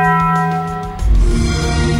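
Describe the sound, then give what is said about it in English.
A bright bell chime, the Taco Bell ring, rings out with a long, shimmering sustain, then a deeper resonant tone swells in halfway through, loud with no voices. “Video has emerged of a limited edition Xbox One that activates when it hears the Taco Bell ring.”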